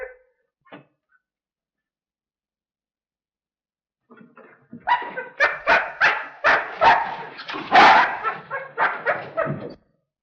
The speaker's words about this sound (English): Oh, good boy, Captain. This dog's been struck a nasty blow.